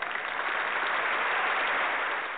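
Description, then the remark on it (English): Hand clapping from many people blends into a dense, steady wash of applause that holds at an even loudness for a couple of seconds, with no voices over it. “Hand clap for Kim Kardashian paying homage to somebody that put her on.”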